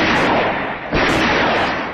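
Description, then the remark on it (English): A single sharp, gunshot-like bang cracks out midway through a loud, steady rushing roar that fills the whole clip and swells slightly afterward, in a film scene at a reservoir; no one speaks. “And then he hears what sounds like a gunshot.”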